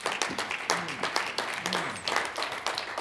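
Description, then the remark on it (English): An audience claps steadily for about three seconds during a sermon, a dense, moderately loud patter of many hands with a faint voice underneath. “I'm preaching better than you are clapping, but I know why you are not clapping, so it's okay.”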